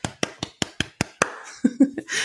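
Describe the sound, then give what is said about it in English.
One person claps their hands in celebration about seven times in a quick, steady rhythm, each clap sharp and bright, before a voice starts talking at the end. “I'm going to clap. Hopefully this sounds okay.”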